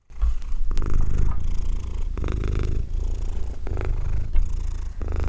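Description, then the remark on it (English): A cat named Hepburn purrs steadily in a happy purr, a low continuous rumble with rhythmic pulses as it breathes in and out, with no talking. “That was Hepburn's happy purr.”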